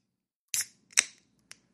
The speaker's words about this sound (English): We got a 6-point Bengali beer. I already was drinking one. Let me just take another sip of that. But we're going to put the open one to the side, and we're going to open up a fresh one.